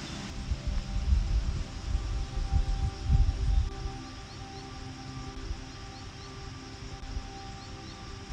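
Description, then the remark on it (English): Soft footsteps crunch over a pine forest floor carpeted with fallen pine needles, with a few twigs crackling underfoot for several seconds before fading into a quiet, steady outdoor hush. “You hear a few twigs crackle under your feet.”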